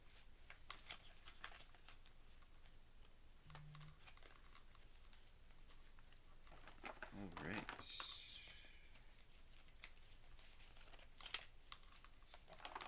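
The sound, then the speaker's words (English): Decks of question cards for a "Than a Fifth Grader?" board game being shuffled: quick, papery clicking and riffling runs in bursts, with a louder sweeping riffle about midway, all at a soft, steady level. “I'm gonna quickly shuffle my decks just to minimize the chance of repeat questions.”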